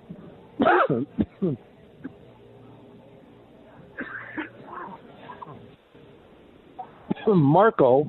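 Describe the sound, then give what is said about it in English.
A radio host has a loud, harsh coughing fit: a burst of several rough coughs, a quieter pause with faint rasping, then another strained cluster of hacking coughs at the end. “Damn, this cough.”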